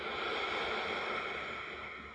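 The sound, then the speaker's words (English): A forceful, breathy exhale pushed out through the nose during a deep breathing exercise, a steady rush of air lasting about two seconds and fading slightly at the end. “Sniff the air out.”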